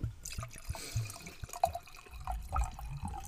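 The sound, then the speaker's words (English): Vodka and Diet 7-Up pour and splash into a glass, with small drips and glugs over a few seconds and no one speaking. “I'm drinking vodka with Diet 7-Up. That's it. Yeah. Hi, it's a party. It's a party. I'm about to pour some more.”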